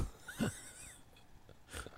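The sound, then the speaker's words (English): Two soft, raspy snore-like breaths from a woman snoring while asleep, one early and one near the end, quiet, with faint background hiss between them and no talking. “And now she's snoring like the biggest dumbass.”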